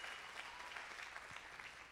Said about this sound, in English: And let's just give Jesus a clap. Let's give Jesus some attention tonight.